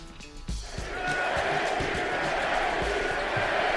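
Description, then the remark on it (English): A large arena crowd at a Lakers game in Los Angeles roars and chants in unison, a loud, steady wall of voices punctuated by rhythmic low thumps roughly twice a second. “Who were they chanting last night?”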